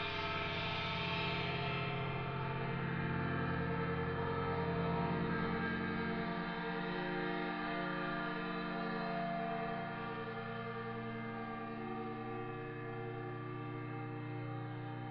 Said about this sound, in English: had this Danish engineering company, Brilliant Care, provided 10 high-resolution seismic accelerometers with the electronics, and we went and installed them on all 10 of Notre Dame's bells, and I made my first 10-channel recordings of all the bells.